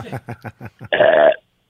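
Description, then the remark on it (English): A loud, drawn-out belch rumbles for about half a second, following a quick run of short, choppy vocal bursts. “Sorry for belching.”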